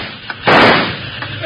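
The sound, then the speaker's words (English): A single loud gunshot bursts out and rings briefly before fading, with a couple of fainter sharp pops around it. No one speaks. “Hey, they're shooting at us. Keep down. I'll try a little lead on them.”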